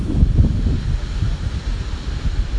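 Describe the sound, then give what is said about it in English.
Ocean waves wash onto the beach at Redondo Beach, Los Angeles, on a sunny day during a heat wave, while gusty wind buffets the microphone, a continuous low rumble and hiss that swells and eases without a break. “I'm sitting here on the beach, on the ocean, with my sun on my face.”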